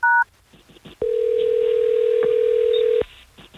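A brief touch-tone dialing beep sounds, then after a short pause a steady, loud telephone tone hums for about two seconds before cutting off, as hosts of the radio station Hot 101.5 phone a caller. No one speaks.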